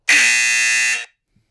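signal or alarm, game show buzzer

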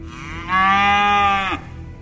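sound effect, cow mooing sound effect

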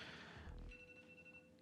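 signal or alarm, alarm going off

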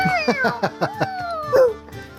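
animal, cat meowing

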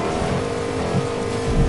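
vehicle, video game car engine

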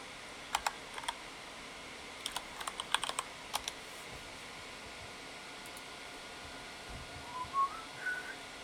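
household object, computer keyboard typing

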